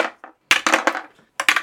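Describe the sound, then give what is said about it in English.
Dice are rolled, clattering and rattling in two quick bursts of sharp, bright clicks separated by a short pause, with no voices; the rolls come up 3, 18 and 13. “Want to roll some dice about barbarians?”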